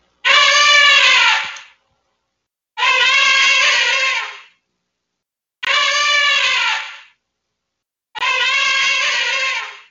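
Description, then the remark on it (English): An elephant gives four loud, high-pitched trumpeting contact calls, each brassy blast lasting over a second and separated by short silent gaps in a steady rhythm. “And again, that's a high-pitched sound, but again, it's supposed to carry.”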